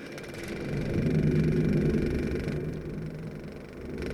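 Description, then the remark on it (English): Car engines rumble steadily with a low, throaty hum and mid-range whir, swelling slightly in loudness before settling, with no voices present. “Love the sounds of those cars.”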